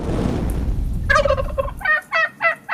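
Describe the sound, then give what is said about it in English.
A turkey gobbles at Christmas as people hunt for turkey: a loud, rapid warbling rattle, then three shorter bursts in quick succession, following a stretch of low rumbling background noise. “It was Christmas, and they were hunting for turkey.”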